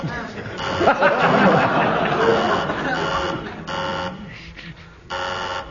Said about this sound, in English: Who buzzed my buzzer? I did. You lose marks for buzzing the buzz. Oh, I didn't. They did.